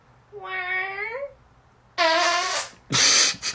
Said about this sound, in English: And it became this little internet trend where people would be like, hey, babe, guess my fart. And someone would be like, and then they would actually fart. And you would see like if they sounded right.